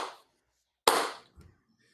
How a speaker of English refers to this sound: Oh, clap.